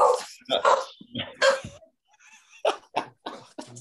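A dog barks in short, sharp bursts up close, mixed with high whining and yelping, then a brief quieter pause before a few more quick barks.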